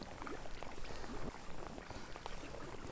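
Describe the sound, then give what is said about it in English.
A rigid inflatable (RIB) tour boat carrying passengers arrives with a steady, muffled engine hum and splashing water wash, continuous and fairly quiet with no talking. “There's a tour boat that's just arrived, a rib with some passengers on it.”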